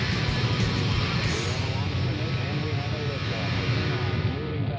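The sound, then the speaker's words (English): A Saturn V rocket lifting off, its engines building up to 7.7 million pounds of thrust: a dense, steady, rumbling roar that holds at full strength throughout, with indistinct voices talking over the noise. “The Saturn V lifting off with power.”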